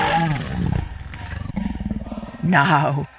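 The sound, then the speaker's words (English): A human voice imitates a lion's deep, low rumbling sigh, a growly vocal rumble lasting about three seconds and swelling into a louder, breathy burst near the end. “Great Lion sighed, a deep, low sigh that rumbled through the earth with a mighty shudder”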